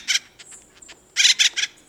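An acorn woodpecker calls from a dead oak tree, giving harsh, raucous calls: a single squawk, then a quick run of three loud, scratchy notes, clear against a quiet background.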